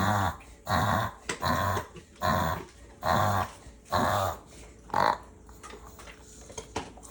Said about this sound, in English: Like I said, people often feel like it looks like they're choking or dying. So it is a super scary thing to watch the first time you see it. I'm going to put a video in here and of my own dog during reverse sneezing so you can see an example of that.